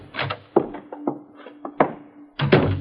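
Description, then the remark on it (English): The door of a small, lighted shop on a narrow, dark street opens with a series of wooden thunks and rattles, several sharp knocks spaced unevenly over a few seconds, with a faint steady hum beneath. “Just open the door, Ulysses.”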